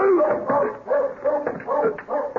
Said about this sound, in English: A one-man dog. Most of the time, he's just barking at cats and other dogs.